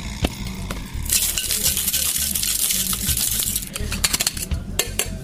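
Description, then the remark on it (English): A cocktail shaker tin holding mint is whipped with pebbled ice in a whip shake, giving a dense, continuous bright rattle of ice for several seconds after a few sharp opening clinks, ending in scattered louder knocks. “Another little bit of pebbled ice. We will give it a whip shake.”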